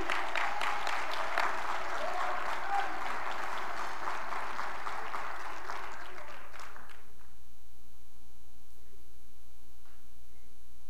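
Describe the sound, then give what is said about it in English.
An audience claps for God together in a dense, sustained burst of applause for about seven seconds, then it stops abruptly, leaving near silence with a faint low hum. “I want you to clap right now for God, that He would come back.”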